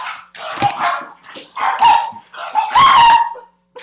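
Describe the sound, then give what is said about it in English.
Dogs fighting, with four loud, harsh bursts of barking and snarling in quick succession, each rising to a strained, yelping pitch. No one talks over it. “Yeah, my dogs were fighting.”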